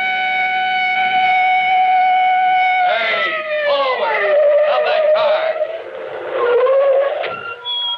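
A police car siren blares steadily at first, then breaks into rising and falling wails, loud and continuous throughout.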